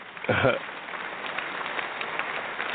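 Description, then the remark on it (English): A steady, dense patter of applause sound effect, soft and even throughout, almost like rain; a brief voice cuts in at the very start. “Why are we applauding …?”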